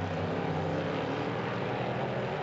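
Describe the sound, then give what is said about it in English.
A loud, high-revving racing engine of Carl Kirkwood's number 47 prototype race car in IMSA Prototype Challenge racing, crossing the line in sixth position on a new lap record, drones steadily, a dense buzzing roar that holds an even volume throughout, with no voices over it. “Kirkwood comes across the line in sixth position in car number 47 and goes quicker again.”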